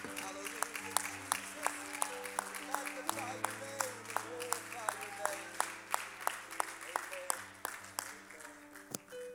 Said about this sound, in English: One more time, let's clap our hands to the Lord. Let's give him praise.